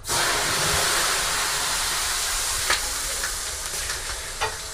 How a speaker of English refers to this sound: You start sweating slightly, and then you throw a modest amount of water on the stones, which I'm now going to do.